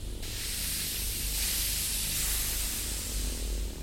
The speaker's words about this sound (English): With a blimp, the air pressure inside is only slightly higher than the pressure outside. So if the balloon or envelope got punctured, you'd just get a slow leak.